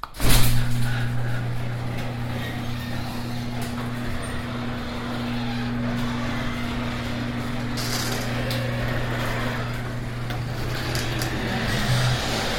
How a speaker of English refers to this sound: Let's see, what else can I do? I can go out and open the garage door.